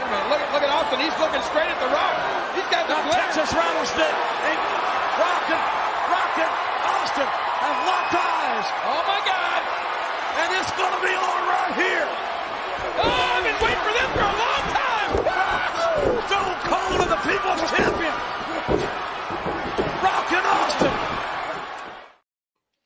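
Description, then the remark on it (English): A big wrestling arena crowd roars and cheers without letup for over twenty seconds during a match, with sharp slams and thuds cutting through the dense wall of noise and voices mixed in, before it abruptly cuts off. “And the crowd picks this up, and I brought the clip, so let's listen to it.”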